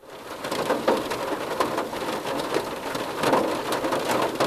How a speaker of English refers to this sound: Oh, that was nice. In case you didn't know what rain on the car roof sounds like.